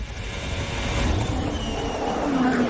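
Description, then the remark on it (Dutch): A Formula 1 car engine, heard onboard Guanyu Zhou's car on the straight, roars loud and steady throughout, its whining pitch climbing sharply near the end as it accelerates. “We zijn aan boord bij Guanyu Zhou.”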